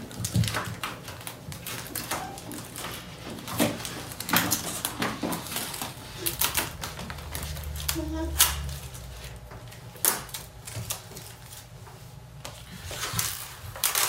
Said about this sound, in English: So I'm gonna go ahead and rip off my tape.